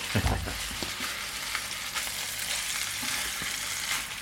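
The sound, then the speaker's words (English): Steady, crackling sizzle of fish frying together in a hot pan at an expedition camp in the wild, fairly loud, with a brief clatter at the start and no voices. “Fish frying in the pan.”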